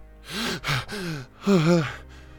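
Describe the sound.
A series of loud gasping breaths, sharp voiced intakes and exhales in quick succession, of someone jolting awake and catching their breath, with no speech.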